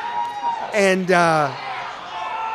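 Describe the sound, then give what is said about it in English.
A brief burst of crowd cheering, loud whooping voices that slide downward in pitch across two overlapping swells lasting under a second, over a steady low background hum. “And as we got into March, they're cheering. Yeah, they love it.”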